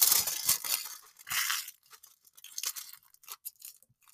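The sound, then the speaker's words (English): Aluminum foil is crushed and crumpled, giving bright, crackly bursts. It is loudest in the first second and a half, then thins into scattered, irregular crinkles. No one speaks. “It is aluminum foil being crushed.”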